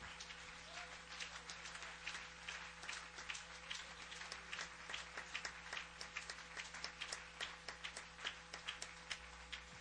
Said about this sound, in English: Everybody shout in Jesus' name. Clap your hands one more time before you're seated.